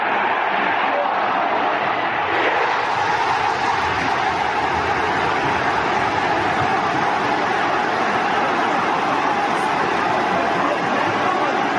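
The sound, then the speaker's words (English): A football crowd in the away end roars and cheers after a goal making it 1-0, a dense, loud wall of voices that stays steady and unbroken for the whole stretch, sounding heavily compressed. “You're just going to listen to what 1-0 sounded like from the away end, because it's nice.”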